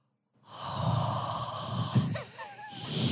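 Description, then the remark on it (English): Someone imitates the heavy, labored Lamaze-style breathing of women in a steam room: a loud continuous stream of breathy huffs and wheezes with a sharp gasp partway through and a whistly rising tone near the end. “Yeah, a lot of heavy breathing like that.”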